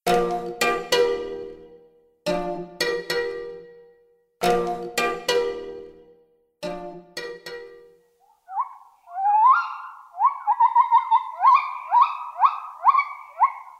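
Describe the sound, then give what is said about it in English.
Several ringing, bell-like struck tones give way to the howling calls of gibbons in a Borneo rainforest, calls that can travel up to 2 miles: a run of rising, whooping hoots that grow quicker and higher, loud and with no voices. “Those orangutans in Borneo share habitat with their smaller primate cousins, the gibbons, whose howling calls can travel up to 2 miles across dense rainforests.”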